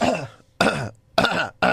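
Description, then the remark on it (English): Someone clears their throat on a live microphone in a series of four short, rough, voiced bursts separated by brief pauses, with no talking around them. “Clearing my throat.”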